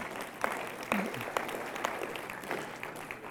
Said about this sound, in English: If there's anywhere you're going to clap, it's right there.